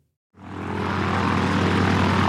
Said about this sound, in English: Why are we on this airplane? Well, you know how we want to get more music by more artists to more people to hear? Yeah. I've rigged this plane up with a loudspeaker. I figured we'll just buzz every neighborhood we can